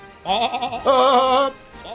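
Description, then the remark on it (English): A sheep bleats loudly: a quavering cry, then a longer, stronger one, with the start of a third at the end. No talking. “The story broke that Dolly, a 7-month-old sheep, was the first clone of an adult mammal.”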